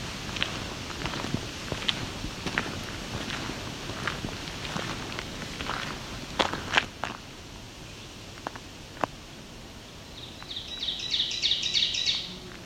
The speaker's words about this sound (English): Okay, here we have an oven bird up here.